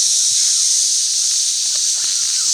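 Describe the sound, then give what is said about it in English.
A loud, steady hiss of escaping steam, a steam release sound effect introducing the radio call-in segment Steam Release, holds for a couple of seconds, bright and airy without pause, like pressure venting from a valve. No one speaks. “Steam Release, where you may call in and vent anything you want to, including about the host of the show.”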